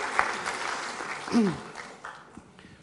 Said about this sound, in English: Oh, that's a good clap.